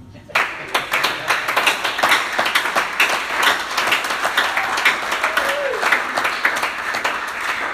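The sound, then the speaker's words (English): An audience breaks into sustained, dense applause, many hands clapping steadily and fairly loudly for about seven seconds, with a brief faint vocal sound rising through it near the end. “Your character is no good, you can't even clap.”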